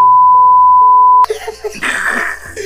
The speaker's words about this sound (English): He's gonna bleep him out. He's gonna bleep him out. I wonder if they'll catch enough of this to know the word is. They bleep it out.